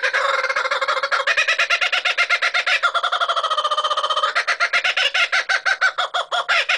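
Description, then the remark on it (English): A kookaburra's loud, raucous laughing call rings out, a rapid run of rhythmic cackling hoots that rise, hold, and break into choppy bursts for several seconds with no talking. “Like chickadee, the name kookaburra is onomatopoeic. It's derived from the world-famous cackle made by these birds.”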